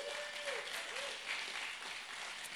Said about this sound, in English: So keep that round of applause going for Kediana.